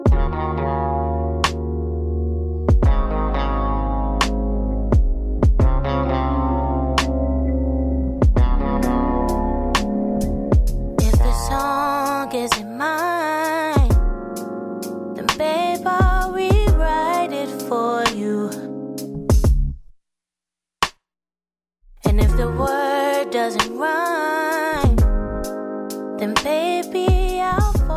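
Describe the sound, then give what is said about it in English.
A soul song plays loud and full, with a warm instrumental bed and a melodic sung voice gliding over it. The music cuts out briefly near the end, then comes back in. “Okay, talk about some soul music, Biko.”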